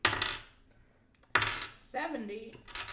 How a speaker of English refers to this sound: Could someone roll me a D100? So you're gonna do like a D10 and a D100 to figure out where we're going.